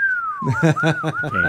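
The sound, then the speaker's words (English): A weak, wavering whistle attempt by a person: a thin tone slides downward, then climbs back up, mixed with breathy voiced sounds underneath, fairly loud for about a second and a half. “You can't whistle”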